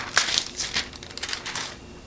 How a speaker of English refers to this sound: All right, so check this out. Left it in the microwave for about 3 minutes, 15 seconds. Gonna pull off the lid here and look at that.